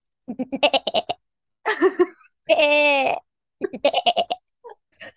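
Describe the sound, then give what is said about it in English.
A person imitates a goat, letting out several quavering, nasal bleats in short bursts with one long wavering bleat in the middle, moderately loud, with a brief spoken word between. “I can bat like a goat.”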